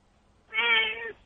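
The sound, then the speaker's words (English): A single drawn-out meow from a female Siamese house cat, clear, with a bright harmonic tone that holds steady for about half a second before cutting off, surrounded by near silence. “Wait, what was that, man? Is that your cat? Yeah, she wants to talk.”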